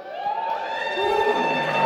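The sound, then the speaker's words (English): A novelist's editor lets out a sustained, high-pitched excited scream at a novel launch at the Salon, over a backdrop of crowd cheering and clapping, holding strong for nearly two seconds. “That's his editor screaming.”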